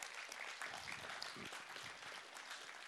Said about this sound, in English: Thanks for clapping.